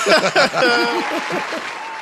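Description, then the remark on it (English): A short burst of crowd applause, steady clapping mixed with a run of rising and falling vocal cheers or whoops, loud at first and easing slightly toward the end. “Round of applause.”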